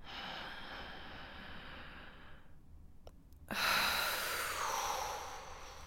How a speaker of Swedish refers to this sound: Vi tar ett andetag in genom näsan. Och låter andetaget bara åka ut. En gång till, andas in.